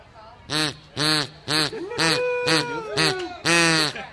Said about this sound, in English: He's going to try blowing on a duck call. Okay. Here you go, buddy. You want to try blowing in there?